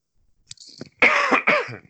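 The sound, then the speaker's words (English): A sniffle and a short breathy intake, followed by two harsh, loud coughs, the second cough briefly after the first. “I apologize for all the hacking and sniffling.”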